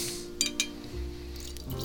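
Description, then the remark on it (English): Two quick, bright glassy clinks, then a low, steady gurgle of 2011 vintage Douwes port, brought home from Porto, Portugal, being uncorked and poured into a very small port glass for under a second. No one speaks. “So let's get the cork out of this sucker and give it a taste.”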